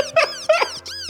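Three quick bursts of high, chirping dolphin squeaks with bending, whistle-like pitch sweeps, fairly loud, with no talking over them.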